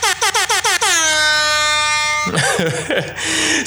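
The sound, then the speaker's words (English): A rapid series of five short air horn bursts gives way to a long, loud sustained blast, followed by a voice talking over a busy mix near the end. “We're going to hit the air horns for that.”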